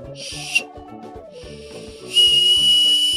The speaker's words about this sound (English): They gave me a tiny little whistle. Let me see. I know this makes for bad audio, but now that I thought about the whistle, I really want to blow it. Okay. Okay. Let me make sure my settings aren't going to just drown you in whistle noise.